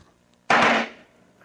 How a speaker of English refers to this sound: But for our purposes, I thought what we could use to create some expansion would be a nice firecracker. And so we're going to throw this into this bucket and just kind of see what happens.